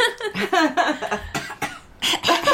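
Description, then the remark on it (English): A fit of coughing: several harsh, rasping coughs in quick succession, some with a voiced, throaty edge, followed by a couple of sharper bursts near the end. “Do you need a drink of my tea? I have a cough drop.”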